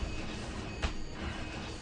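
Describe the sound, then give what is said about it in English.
A steady, grainy electronic buzz from a Wii video game's warning that the character is at low health and low energy drones on without pause, fairly quiet, with one brief click partway through and no voices. “The buzz is getting annoying, he says.”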